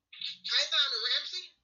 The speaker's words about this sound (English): I can hear the phone is breaking up.